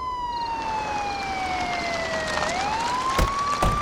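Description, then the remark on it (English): A police siren wails with a slow, falling-then-rising tone. It is loud and continuous over a steady background rumble, and two sharp clicks or thumps land near the end. “So cops show up.”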